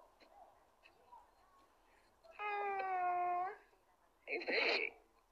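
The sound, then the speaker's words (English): A cat lets out a long, drawn-out meow, followed a moment later by a shorter, sharper meow, both fairly loud over a quiet, murmuring background. “And then my cat got pretty toes too. Let me see your cat.”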